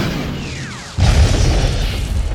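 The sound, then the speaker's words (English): A woman climbing down the side of a building at a prison complex fires a rocket launcher with a brief falling whoosh, then a single loud, deep explosion bursts and leaves a heavy low rumble that carries on to the end. “She's got a rocket launcher.”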